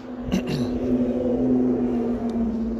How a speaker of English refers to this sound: Ferrari just driven past. You're not cool. Well, you are cool. Who am I kidding? But anyway, I was doing some poetry there, and your man, Ferrari man, drove past, but, yeah. You can probably still hear that.